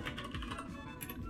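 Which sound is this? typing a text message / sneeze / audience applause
typing a text message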